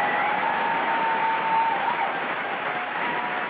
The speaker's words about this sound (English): And, yeah, you know what? That gets one of these. I don't care. I'm giving myself applause.